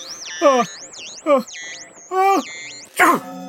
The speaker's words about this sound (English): You know, that's the first time I've ever heard you sneeze. I didn't even know robots could sneeze.